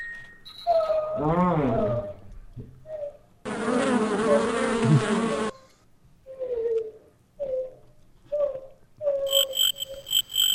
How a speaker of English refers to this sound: Enough of the mosquito.